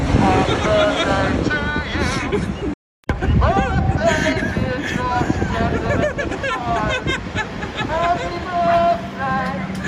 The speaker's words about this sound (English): Has a megaphone that he bought yesterday from Officeworks and is down on the corner in Collingwood bellowing out happy birthday through the through the megaphone. This is great.